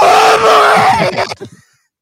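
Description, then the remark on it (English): A man's voice imitates a death scream: one loud, strained, drawn-out wail lasting over a second, then breaking into a few short, fading grunts before silence. “They simplified their death screams. Over time, it became boogie woogie woogie woogie, but initially it was”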